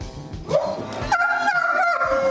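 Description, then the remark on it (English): Champ, President Biden's dog, interrupts a 60 Minutes interview in 2015, vocalizing in a drawn-out, whining yowl: a short rising yelp, then a sustained, wavering tonal wail that bends in pitch for about two seconds, fairly loud with no talking. “He interrupted a 60 Minutes interview in 2015. He's a talker.”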